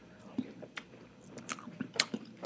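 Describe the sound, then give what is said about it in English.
Wet chewing of soggy strawberry-flavored Magic Spoon cereal, with irregular soft crunches and mouth sounds repeating every fraction of a second, fairly quiet with no talking. “I'm eating their strawberry flavor right now, which is one of their seasonal flavors, and it's delicious.”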